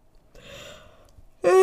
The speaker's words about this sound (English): Oh my god. I'm sorry. I don't know why this makes me yawn.